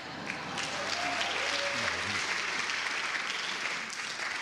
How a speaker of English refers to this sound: I am happy to be here. I thought you were going to clap for that.